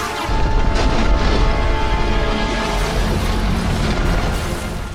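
In Star Wars, two of Maul's super commandos fire their jetpack rockets at the Jedi's ascending ship and it explodes: a loud, sustained roar of rumbling blasts and crackling debris that holds steady for several seconds before easing slightly at the end, with no voices.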